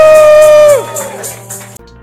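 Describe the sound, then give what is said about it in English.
An audience claps in a steady rhythm for the Lord as they take their seats, while a loud, drawn-out shout or held note rings over the noise, then slides down and fades, leaving scattered clapping that cuts off abruptly. “Give the Lord a clap of hands as you take your seat. Oh, give the Lord a shout.”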